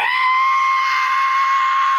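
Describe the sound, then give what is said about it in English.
A voice imitates a low-flying plane's screech: one steady, loud, shrill tone held for about two seconds, somewhere between a scream and a whistle, with no other talk. “I was in the bathroom taking a shave, and I heard a screeching, between a screech and a whistle.”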